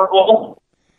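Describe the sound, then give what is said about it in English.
A brief snatch of muffled, phone-quality voice breaks off abruptly after half a second, leaving dead silence like a call dropping out. “Uh-oh, I think we're cutting out here.”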